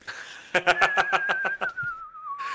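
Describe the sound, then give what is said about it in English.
A person vocally imitates a single, steady whistle that slowly slides downward in pitch over about two seconds, partly overlapped at the start by a burst of rhythmic, breathy laughter. “By and just a stiff whistle.”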